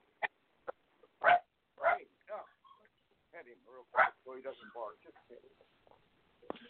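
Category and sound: animal, dog barking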